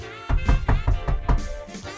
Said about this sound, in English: Meanwhile, in Washington, D.C., Mary receives a knock at the door at apartment 227.